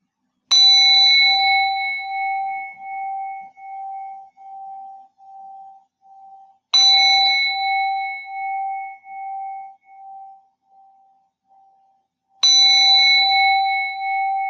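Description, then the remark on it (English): A meditation gong is struck three times at the end of a meditation session, about six seconds apart. Each ring is clear and loud, with a long shimmering, pulsing decay that fades before the next strike. No voices are heard. “So I will ring the gong 3 times, then you can come out of the meditation.”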